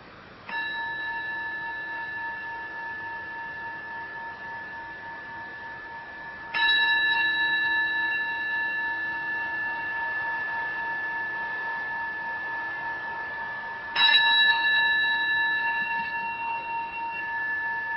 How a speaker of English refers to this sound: Opening to hearing and just receiving the sound of the bell.